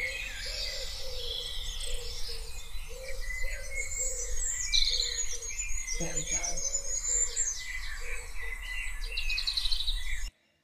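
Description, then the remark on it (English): A dense dawn chorus during lockdown, many birds chirping and warbling at once, layered trills and tweets filling the air continuously, with a low steady background hum and a brief muffled thump partway through. “The Dawn Chorus in lockdown. You can hear the bird song.”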